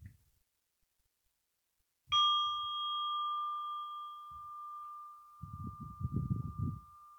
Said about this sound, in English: And I will ring the bell to start the meditation.